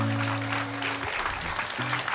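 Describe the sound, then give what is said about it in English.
An audience at a live storytelling event on the KCAW stage applauds, a dense, steady wash of many hands clapping that holds its level for the whole couple of seconds, with a low humming tone running underneath at first. “Let's hear another clap for these guys.”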